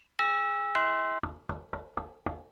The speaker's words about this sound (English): Who the devil can it be at this time of night? And why does our spaceship have a doorbell?